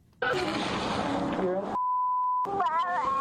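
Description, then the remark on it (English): A little kid talks in audio obtained by KSAT TV, then a single steady censor bleep replaces their words for under a second, and the talking resumes right after, clear. “I mean, it's hard to tell with all the bleeping going on there.”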